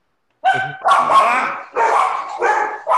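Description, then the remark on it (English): Dogs bark loudly, a quick run of four or five sharp barks in irregular succession, with no talking over them. “Sorry. That's my dogs.”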